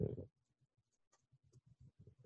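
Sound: typing on a keyboard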